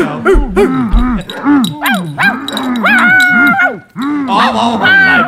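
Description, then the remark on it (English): A voice lets out a rapid string of high, whining yelps and whimpers that sound like a pack of distressed puppies. The cries are loud, rising and falling in pitch without pause. “It's just there's sound a lot like of dogs. Sound like a puppy pound up yeah, in here.”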